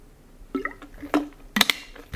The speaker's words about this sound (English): Okay, let me get a drink of water here, and then I think we're about to wrap up.